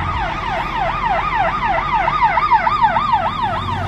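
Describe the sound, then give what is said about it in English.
A passing fire truck's siren wails in quick, repeating up-and-down sweeps, loud, with a low engine rumble underneath and no one speaking. “Can you imagine if you went through and the fire truck hit him?”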